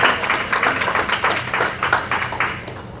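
A church audience claps together as praise to God in a dense, steady burst of applause, many hands overlapping into a continuous crackle that stays loud and even for about three seconds with no voices.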